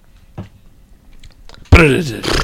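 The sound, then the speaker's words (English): Someone imitates rolling dice with their mouth: a few faint clicks, then a loud, harsh, rattling vocal burst that runs to the end, like a throaty clatter. “Those are terrible dice sounds.”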